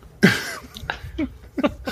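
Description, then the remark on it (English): A single loud cough right into the microphone to check recording levels, followed by a few quieter, shorter throaty bursts. No one speaks. “If you can give me a good cough.”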